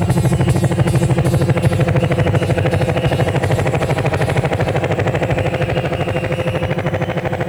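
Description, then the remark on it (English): A helicopter's rotor chops steadily and loudly for the whole stretch, a fast, even thudding pulse over a deep engine roar, with no voices. “Sound of the choppers.”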